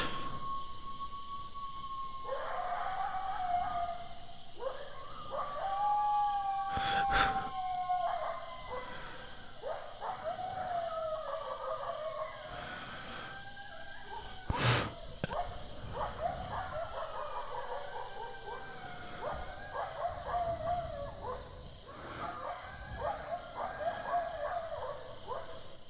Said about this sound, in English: Somebody let their dog out.